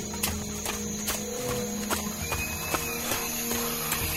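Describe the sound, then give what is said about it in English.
A dense chorus of frogs croaking loudly in a swamp at dusk, with sharp, knocking croaks popping out at irregular intervals over a steady, buzzing wash of calls. No one speaks. “I never heard frogs so loud before. So many croaking all at once.”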